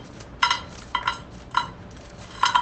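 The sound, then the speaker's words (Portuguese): Small dry ant abdomens rattle and patter as they are poured into a metal pan for heating, in four short, clattering bursts spaced about half a second apart, crisp, with no talking. “E, meu Deus, esses são os barulhos das bundinhas.”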